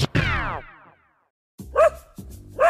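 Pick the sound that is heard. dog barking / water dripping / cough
dog barking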